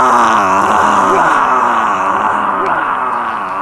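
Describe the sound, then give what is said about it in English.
A person in dark woods imitates a Bigfoot scream with a long, loud, guttural moaning howl, sustained and wavering for several seconds, with no talking. “Are you ready to make a Bigfoot scream? As they are primates, they sound like us, so I reckon it's a low guttural roar like this.”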